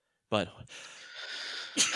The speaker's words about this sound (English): I sneezed.